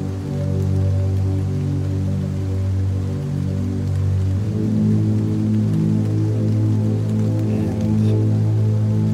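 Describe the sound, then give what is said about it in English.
Steady monsoon-season rain falls in a barrio, pattering continuously on a roof and into a water barrel placed under the roof to collect it, with a sustained low, droning resonance running underneath throughout. No one speaks. “The rains, it's raining in the barrio.”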